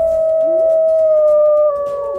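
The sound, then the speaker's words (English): A wolf lets out one long, loud, sustained howl, holding a steady pitch that sags slightly toward the end, with faint rustling underneath and no talking. “So, how about wolves?”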